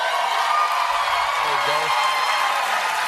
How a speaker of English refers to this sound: I'm going to pause there in the middle of the... I'm going to pause in the middle of the applause. This is Kirsten Gillibrand, by the way.